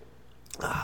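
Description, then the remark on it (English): A quick slurping first sip of Victory Hop Ranch India Pale Ale beer, a brief wet hiss that follows a moment of near silence and ends the short clip without any talking. “This is going to be the first sip.”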